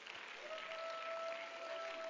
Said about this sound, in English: Come on, if you believe it, why don't you clap your hands to Him and give Him praise right now?